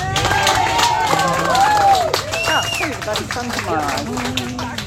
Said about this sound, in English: Round of applause for both. Yay!